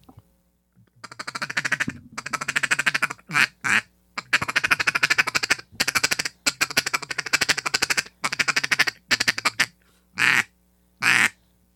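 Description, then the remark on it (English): An old black duck feed call blown loud in a fast, rolling feed-call chatter imitating a feeding duck, in bursts of varying length, finishing with two separate drawn-out quacks. No one speaks. “But this is the old black deal, and this is a feed call.”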